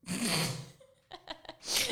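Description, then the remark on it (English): A loud sneeze bursts out, followed by a few short snorting breaths and then a second forceful sneeze-like blast at the end. “Oh, God bless you all.”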